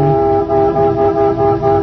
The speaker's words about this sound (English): I looked out, and he was leaning on the horn and beckoning to me at the same time.